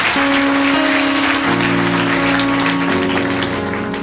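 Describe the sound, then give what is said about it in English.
A crowd claps steadily for the reading of the word, a dense wash of many hands applauding together, loud and sustained, with sustained organ-like tones humming underneath throughout. “Let's clap our hands for the reading of the word.”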